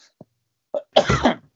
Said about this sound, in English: I should only hit that mute button before I cough. Sorry. Sorry, I just have a little COVID in my throat there.